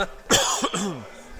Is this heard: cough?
yes